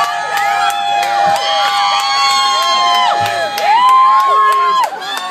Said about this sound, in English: Come on, everybody, cheer on your favorite wrestler!